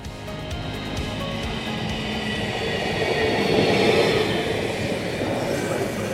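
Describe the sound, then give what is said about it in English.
Steady rumble of a Valley Metro light rail train in motion, heard from on board, with a broad hum and rattle that swells slightly midway before settling back. “Now come with me on board the Valley Metro Light Rail System on a ride with CEO Jessica Mefford-Miller.”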